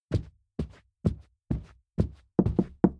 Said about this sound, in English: Didn't you knock at the door? Are you crazy? Thought I heard somebody.